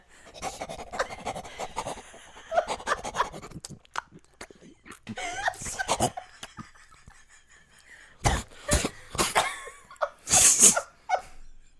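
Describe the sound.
A person imitates a panting dog with quick, rhythmic breathy huffs, ending in a few louder, sharper bursts of exhaled air.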